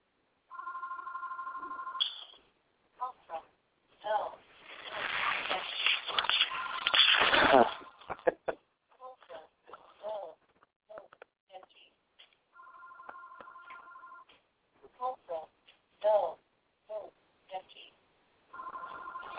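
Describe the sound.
A telephone rings twice, a steady electronic trill, fairly clear, with a loud burst of rustling noise and short stretches of talking between the rings.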